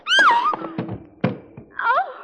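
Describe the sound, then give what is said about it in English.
A punch that knocks a man out lands with a sharp, dull thump amid a short scuffle of lighter knocks, framed by a man's strained, wailing groans before and after the blow. “I just knocked him out.”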